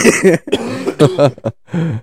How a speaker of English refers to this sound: Is that cough away?